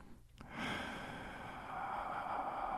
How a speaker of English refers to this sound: Breathing. Yes, breathing. Proper breathing is the foundation of meditation, a tool of psychotherapy, an integral part of the performing art, and is a valuable technique for accessing the subconscious and enhancing creativity.